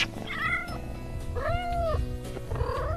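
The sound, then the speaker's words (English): One of a pair of kittens adopted about two months earlier meows three times at home, high-pitched and clearly audible, each cry rising then falling, spaced about a second apart over a low background rumble. “Cats, this is radio. If you can purr or meow, that'd be...”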